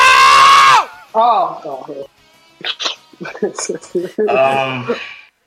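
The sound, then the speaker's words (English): A loud, sustained, strained scream from a played clip of the cartoon villain Zamasu bursts out, followed by agitated shouting and another drawn-out cry at the end, sounding like a dramatic voice-acted yell. “But here's a big fat L of the week, and that is the Sonic movie trailer dropped, and all I'm gonna say is play that Zamasu scream clip that I got you.”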